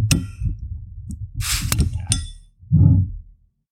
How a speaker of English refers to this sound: let's pour our first round and drink one of your beers.